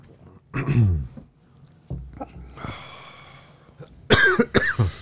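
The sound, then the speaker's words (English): Someone coughs after taking too big a sip of coffee: a hacking cough early on, some rough, sputtering throat noise, then a final cluster of loud, forceful coughs. “Coughing after the sip doesn't say a lot, but I took more than I should have.”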